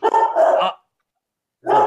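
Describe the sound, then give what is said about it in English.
Dogs barking in a quick burst of loud, overlapping yaps, then a pause of silence before another sharp round of barking starts up. “Sorry, my dogs are going off.”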